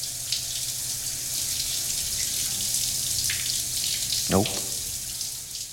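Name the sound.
shower water running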